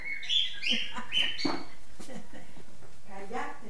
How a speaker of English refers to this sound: And his daughter, and grandkids, and cats, two Doberman pinschers, and a very chatty bird.